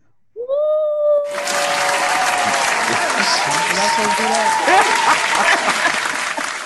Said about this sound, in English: Ladies and gentlemen, brothers and sisters, put your hands together and give a warm round of applause for the one and only